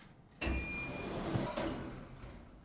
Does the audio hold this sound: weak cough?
no